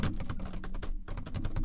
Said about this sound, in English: You don't call people by typing on your computer, bro.